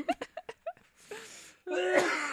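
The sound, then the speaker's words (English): A string of short, sharp bursts gives way to two longer, raspy, wheezing coughs from someone who has had a cough for about two months, fairly loud, with no talking over them. “Fuck, I like wasn't coughing until we did this show.”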